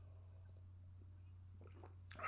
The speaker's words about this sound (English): take another sip of the wine here.